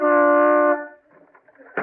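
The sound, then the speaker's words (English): A single loud, sustained car horn honk, tooted in the driveway of Bing Crosby's house, lasting under a second, a steady buzzy tone that cuts off abruptly, followed by faint indistinct rustling and a brief noisy burst. “Hey, who's that honking in C sharp?”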